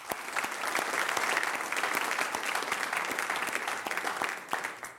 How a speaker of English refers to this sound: Well, thank you guys for that, and thank you for our music team this morning. Would you just give one more round of applause for both?